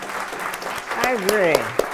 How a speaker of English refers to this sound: So Ralph Lauren. Yeah, that deserves an applause.